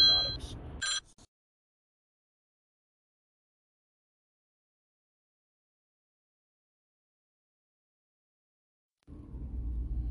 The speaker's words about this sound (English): Okay, a little phone call interruption. My apologies.